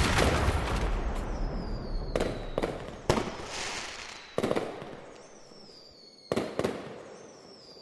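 Bonfire night fireworks crackle and boom in a rolling series of sharp bangs, irregularly spaced, with thin high whistles from rockets streaking between the louder explosions over a constant hissing fizz.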